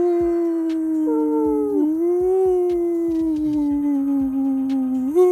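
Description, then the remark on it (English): Several people howl like wolves in long, overlapping wavering tones that rise and fall together, loud, continuing for a few seconds with soft thumping beneath. “We had a Howl Hour, our sister podcast, just an hour of people howling, and we just howled a lot.”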